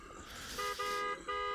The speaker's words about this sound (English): Now more people are honking. He's causing traffic.